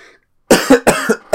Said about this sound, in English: It's like when you got, like, nothing in your throat, but you need to cough anyway.